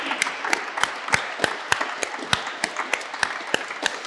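An audience applauds a speaker steadily, a dense wash of clapping punctuated by sharp, evenly spaced claps that stand out in a regular rhythm, moderately loud and with no one talking.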